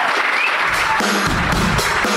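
An audience at a comedy show in Boston applauds steadily after a comedian's set, a dense wash of many hands clapping at once, holding loud and even for about two seconds with no voices rising above it.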